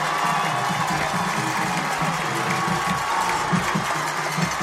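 A large football stadium crowd roars and cheers continuously as the James Clemens Jets team runs onto the field, a dense, loud wash of voices and applause with steady energy and no talk over it.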